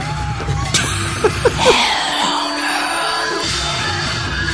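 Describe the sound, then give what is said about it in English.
Loud, chaotic theme music plays throughout, crowded with shrill screaming voices and a few sharp metallic clangs of pots and pans being banged, all blurring into a dense, frantic wall of noise. “You listen to the music, the screams, and the screams and the banging of fucking pots and pans or whatever the fuck.”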